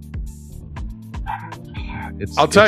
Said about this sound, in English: The dog started fighting.